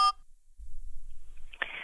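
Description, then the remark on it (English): A short electronic phone tone opens, then a low hum before a bright, tonal beep rises near the end, as a voicemail left by a sister starts to play back. No one speaks. “She left a voicemail. Shall we listen to it? Let's hear it.”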